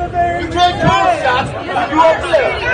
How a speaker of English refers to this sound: That's a really excellent, impossible to understand, angry crowd shouting background.